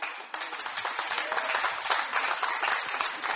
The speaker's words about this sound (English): Your golf clap is very cute, but we'll continue.